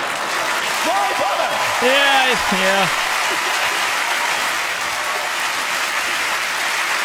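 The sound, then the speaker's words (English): Steady applause from a crowd fills the whole recording, a dense patter of clapping, while a couple of voices briefly call out over it near the start. “Just continue applauding if you have one of these names that has come as a little story.”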